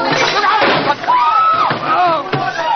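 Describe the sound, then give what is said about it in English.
A single sharp gunshot from a revolver cracks out near the end, fired when the shooter's hand is knocked, brief and not much louder than the agitated voices talking over it throughout. “No, no, he knocked my hand. The revolver went off.”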